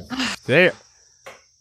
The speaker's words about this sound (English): The crickets are back inside.